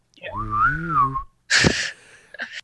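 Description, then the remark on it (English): A person imitates a bird with a wavering, warbling whistle that rises and falls for about a second. It is followed by a loud, breathy chirping burst and a brief final chirp. “I'm going to get my servitor bird to start singing and chirping.”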